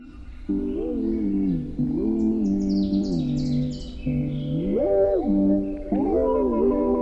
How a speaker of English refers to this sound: There's a bird at 6 a.m. which you hear. Between 5:45 and 6 a.m. you know if you hear those birds, then it's time to wake up.